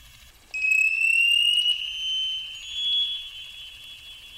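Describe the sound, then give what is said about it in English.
Navy sonar pings: a long, piercing, high-pitched tone that glides slightly upward, swells and wavers in loudness, then holds steady for several seconds over a faint low rumble, with no voices. “Let's hear some Navy sonar.”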